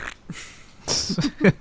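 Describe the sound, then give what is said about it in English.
An Alexa voice assistant, asked to fart, imitates a fart with a short, sputtering raspberry: a soft breathy start, then a few buzzy, flapping bursts ending in a louder final blurt, moderately loud. “So I said, Alexa, can you fart? And then it went.”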